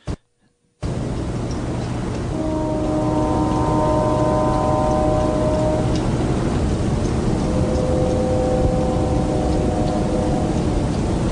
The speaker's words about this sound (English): I hear what sounds awful lot like a train whistle.